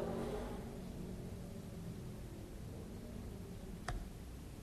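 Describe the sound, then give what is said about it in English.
A motorcycle engine drones and gradually fades away over a few seconds, leaving a steady background hiss, with a single sharp click near the end. “And in the sound of the motorcycle,”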